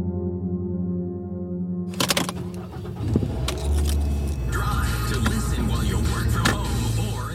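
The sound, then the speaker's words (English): After a steady tone and a couple of sharp clicks, a borrowed car's engine turns over and catches, then settles into a continuous, fairly loud running rumble. “One fall Saturday, Maura borrows a friend's car.”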